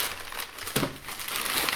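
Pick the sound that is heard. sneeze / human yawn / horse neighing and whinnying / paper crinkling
paper crinkling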